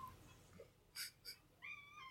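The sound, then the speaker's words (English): A cat named Jiggles makes two short, breathy chirps, then a longer tonal meow that rises at the end. The sounds are soft, with no talking and only faint background noise. “Oh! Kitty, kitty. Hi, kitty.”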